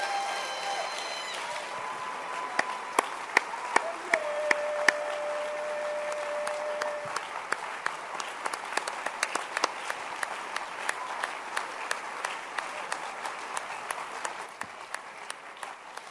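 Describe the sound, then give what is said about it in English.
An audience applauds steadily for about sixteen seconds, a dense wash of many hands with sharper individual claps popping out, while faint sustained musical tones hum underneath early on. “Don't you just feel like clapping?”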